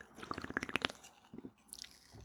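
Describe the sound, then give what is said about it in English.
A Coke Life soda (Coca-Cola made with stevia) being opened less than a foot and a half from the microphone: a quick burst of bright clicks and fizzy crackles, followed by a few softer, wet swallowing sounds as someone drinks. No voices. “I'm opening my, oh yeah, it's less than a foot and a half away from me, but the microphone makes it sound far. Drinking my Coke Life, right?”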